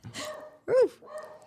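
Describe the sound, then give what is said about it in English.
An old dog named Nico lets out one loud bark, framed by softer, shorter vocal sounds before and after, with no other noise around it. “Nico's an old man. He doesn't know what he's barking at.”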